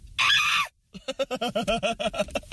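A loud, harsh human scream bursts out for about half a second, then breaks off into a quick run of rhythmic, voiced pulses, like breathless laughter.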